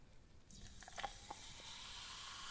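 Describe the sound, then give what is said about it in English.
A soft, steady fizzing hiss builds after a brief pause, dotted with a few small crackling pops early on, then settles into a continuous bubbly sizzle of brandy carbonated in a SodaStream. No one speaks. “It's fizzy. I put it in the soda stream.”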